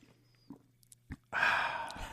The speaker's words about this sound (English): Hold on, I'm going to take a sip of this cream soda. Just 1 second. Cue sound effects.